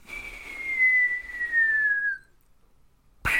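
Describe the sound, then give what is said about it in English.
Someone whistles a cartoon-style falling tone in the manner of a Wile E. Coyote cartoon, for a character falling, one long, clear pitch gliding slowly downward for about two seconds, then a brief silence before an abrupt burst of noise. “I was surprised there wasn't a Wile E. Coyote type.”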